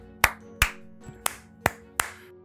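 Hand claps made to sync audio: five sharp claps ring out in an uneven rhythm, fairly loud, with a softer sixth clap in between and faint background noise under them. No one speaks.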